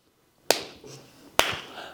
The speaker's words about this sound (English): What if you hear this, but you don't hear no bed squeaking? What are you going to say? Hey, man. Don't slap her ass like that.